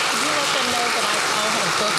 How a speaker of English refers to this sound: Thank you so much to our panelists. I'm so sorry we have to wrap things up. Can you please give them a warm round of applause? Thank you.